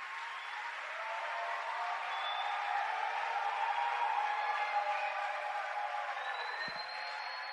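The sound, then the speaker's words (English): An audience claps their hands for Jesus in a steady, dense wash of applause that holds at an even loudness for several seconds, with a few faint cheers rising above it. “Go ahead and clap your hands for Jesus.”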